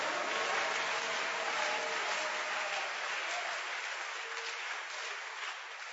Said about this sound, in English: Give the Lord a wonderful, wonderful clap of praise.